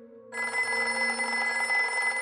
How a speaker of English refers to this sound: 2:30 goes by. 3 o'clock. 3:30. Then the phone rings.